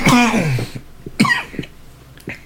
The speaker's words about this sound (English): A heckin' cough.